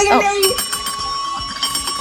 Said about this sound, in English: Ring that bell.